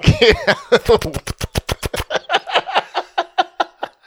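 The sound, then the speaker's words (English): A person imitates a helicopter with their voice, producing a fast, steady train of choppy breathy pulses that begins voiced and gradually slows into looser, evenly spaced bursts. “That was a helicopter with a British accent, by the way.”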